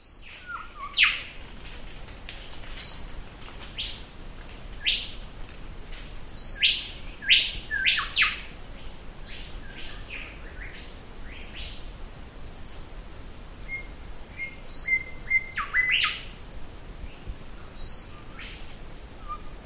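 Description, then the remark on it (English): A mangrove golden whistler on Little Pigeon Island, in an archipelago off the coast of Western Australia, gives its whit-whit-whitchell call repeatedly, sharp whistled notes in quick bursts, clear, over a steady high-pitched insect drone with no voices. “Listen out for its whit-whit-whitchell call.”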